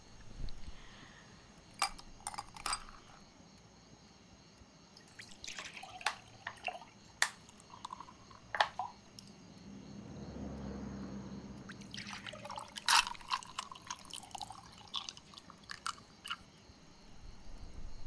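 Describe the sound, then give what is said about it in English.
A drink is poured into a glass: scattered sharp clinks of glass and ice, then a steady gurgling pour swells in the middle and fades into more light clinking. No one speaks. “How about a drink? Let's start there. Sure. Pour me one?”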